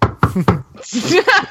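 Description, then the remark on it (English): Three quick, evenly spaced knocks on wood ring out clear, then a person starts talking right after them. “I mean, maybe I'm gonna knock on some wood here.”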